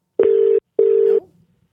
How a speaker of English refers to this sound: Well, let's get this leader on the phone, because I'm jazzed to give him a ring right now.